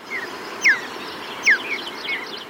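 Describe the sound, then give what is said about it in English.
Two short, bright mountain bluebird chirps ring out about a second apart, with fainter answering notes, over a steady hiss of outdoor background noise and no voices. “After listening through hours of sound archives, they found a bird chirp that they really liked, the mountain bluebird.”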